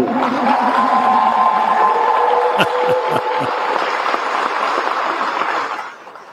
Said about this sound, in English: We're calling for a special legislative session to consider the following bills: HB 44, universal background checks; HB 135, you can applaud.